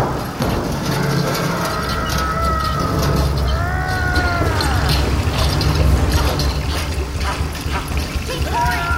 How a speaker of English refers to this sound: The hand pump by you! Right! Grab one of those steel valves! While I pump, pour coolant into the reserve tank! Okay!